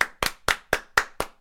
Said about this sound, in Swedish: Vi säger tar en applåd